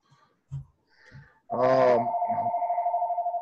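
A landline house phone begins ringing: a loud, steady electronic tone with a rapid warbling pulse that carries on to the end, after a few soft low thumps.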